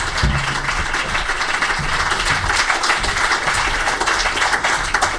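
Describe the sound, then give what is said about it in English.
An audience breaks into a sustained round of applause for three guests after a question session, dense overlapping clapping at a steady, fairly loud level across the whole stretch, with no voices on top. “But if you could have a big round of applause for our three guests, that has been absolutely fabulous.”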